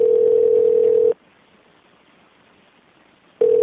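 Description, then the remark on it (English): A phone call from a dispatcher trying to call back, ringing out: a steady electronic ringback tone sounds for about a second, falls silent for a couple of seconds, then starts again. Clear, with no voices. “Again, dispatch tried calling back.”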